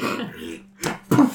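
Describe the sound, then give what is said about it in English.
Someone vocally imitates a horse farting out an entire apple: a low, buzzing rasp, a brief pause, then two short, sputtering bursts, fairly loud, with no other talking. “The horse looks at you and farts an entire apple.”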